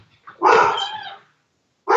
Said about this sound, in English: Oh, hang on. We got dogs. Hang on.